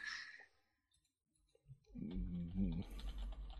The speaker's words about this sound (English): Typing. I'm typing.